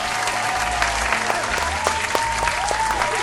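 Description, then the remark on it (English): Steady applause from many hands, a dense wash of clapping with sharp individual claps standing out, fairly loud and even throughout with no voices. “I'm gonna give you a nice clap.”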